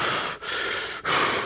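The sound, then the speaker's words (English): A voice imitates the heavy, labored breathing of a very weak man lying on his back on a cot: three long, rasping breaths in quick succession, broken by brief pauses, fairly loud with no words spoken. “I had brought him over to a cot because he was so weak, and he was breathing heavy.”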